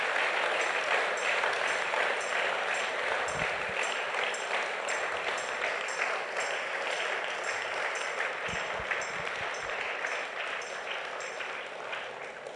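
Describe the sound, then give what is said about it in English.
A church audience claps together as a clap offering unto the Lord after a prayer, in a sustained, dense burst of applause that holds steady throughout, a bright wash of many hands slowly easing off toward the end, with no talking. “If you were blessed, let's give a clap offering unto the Lord.”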